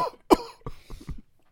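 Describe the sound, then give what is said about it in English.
A voice imitates an old man coughing: one sharp, harsh cough burst followed by a few rougher, raspy hacking sounds, fairly loud. “Like old man coughing.”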